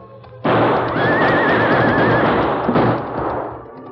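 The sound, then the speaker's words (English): A horse lets out a loud, wavering whinny over a dense wash of noise and clattering hooves that starts abruptly and carries on to the end. “you take his horse. Bring his horse along with us.”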